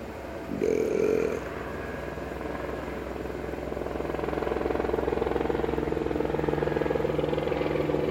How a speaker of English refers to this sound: Fuck off, Chopper. Chopper 65.